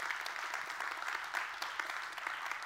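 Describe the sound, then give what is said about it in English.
Sustained applause from a church audience for the serve team, a dense, steady patter of many hands clapping at once with no pauses, fairly loud and even throughout, and no voices heard over it. “Can we give our serve team just real quick a good hand clap?”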